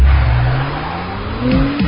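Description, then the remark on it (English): The turbo V6 engine of a new Acura MDX Type S SUV, rated at 355 horsepower, roars as it accelerates hard, its pitch climbing steadily, while tires squeal sharply near the end; loud, with no voices. “You're about to experience the impressive performance of the new Acura MDX Type S.”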